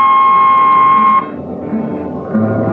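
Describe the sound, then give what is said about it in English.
A danger peeper aboard a Hawk-class spaceship, used for hand damping, gives a loud, steady electronic beep that holds one high pitch for just over a second, then cuts off, leaving a lower humming drone until a fainter tone starts again near the end. “Jetman slept with one ear tuned to that, and as long as the peeper ticked off slow and steady, he knew the ship was safe.”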